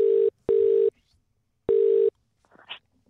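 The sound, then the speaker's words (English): A steady telephone line tone sounds in loud, evenly pitched bursts, two close together, a pause, then another, as a call is placed, followed by a faint brief rustle. “Put up the phone, mate. Let's ring Les.”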